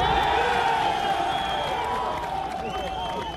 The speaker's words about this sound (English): Many of us remember that moment. You can hear the rallying cry there from the people at Ground Zero.